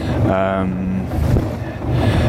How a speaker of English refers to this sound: Sorry for the quality of the audio coming up. I'm stood by the engine of the rib, which is too loud for my microphone to handle in places.